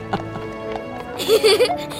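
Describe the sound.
A few hollow hoof clops from a horse on pavement, spaced unevenly and fairly close, with a burst of voices rising over them near the end.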